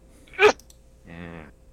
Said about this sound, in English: Is it going to be a triplet? Yeah. Usually, I always sneeze in couplets, sometimes triplets.